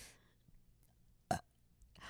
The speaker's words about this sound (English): Oh my God. Of course that counts. Burps are the best. Yes! I burped just for you. I burped directly. I feel like it's my birthday. My burp.